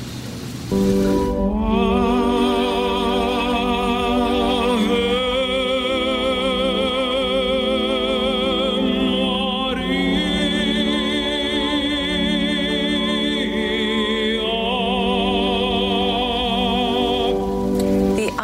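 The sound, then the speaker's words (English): An Italian tenor sings opera in the empty Duomo Cathedral in Milan without an audience, in a concert live-streamed on Easter Sunday, holding long, steady notes with rich vibrato that echo through the space. The singing stays loud and continuous for the whole clip, with brief shifts between phrases. “Unmistakable sound of … echoes around the Duomo Cathedral in Milan without an audience.”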